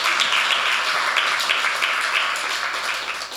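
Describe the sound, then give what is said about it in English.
A church audience applauds steadily, many hands clapping at once in a dense, sustained wash of sound that stays loud throughout without any voices breaking through. “I told you to clap your hands.”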